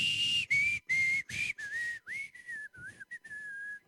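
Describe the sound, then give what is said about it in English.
Someone whistles a short melodic tune, a series of clear notes in bursts that step up and down in pitch, close and fairly loud, with no talking. “Remember that old song long time ago, back in the 80s maybe, I could whistle it.”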